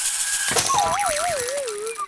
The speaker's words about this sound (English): Oops. Oh no, Elliot, you broke my rain stick. Sorry, Cowy. I'll fix it. I just got to pick up all these little beans.